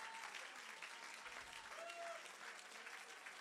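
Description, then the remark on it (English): A large crowd claps their hands steadily in a dense, continuous wash of applause, urged to clap, shout hallelujah and speak to their mountain, with faint voices and a brief tonal sound poking through the noise. “Right now, while you're clapping your hands, speak to your mountain.”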